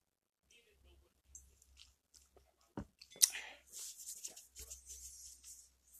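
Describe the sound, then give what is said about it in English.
Quiet sipping of coffee: a sharp click, then airy slurps and soft wet mouth sounds spread over several seconds, with no talking. “You think of your argument while I sip this coffee real quick.”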